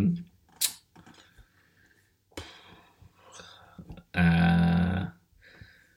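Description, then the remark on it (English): A loud burp erupts near the end, a deep rumbling belch lasting under a second, after a stretch of faint talking and small clicking noises. “I burp really loudly after I finished in my mouth if it was delicious.”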